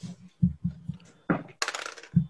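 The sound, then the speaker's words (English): Dice rolling across a table for an initiative roll in a tabletop role-playing game: a quick series of hard clattering knocks and thuds, then a bright rattling skitter, ending with a final solid clack. No voices. “Whew. Some terrible rolls.”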